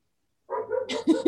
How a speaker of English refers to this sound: For fuck's sake, what the hell is wrong with these dogs?